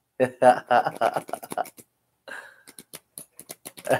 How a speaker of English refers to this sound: The card shuffle music to my ears.